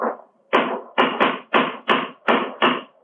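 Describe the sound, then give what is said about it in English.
A cane raps sharply against white stonework at a large, recently made chip, about seven times in an uneven rhythm, each hard click trailing into a brief, hissy ring. No one speaks. “It's a hard knock.”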